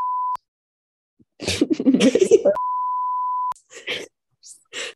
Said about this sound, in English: Dude, I'm going to have to bleep his name out.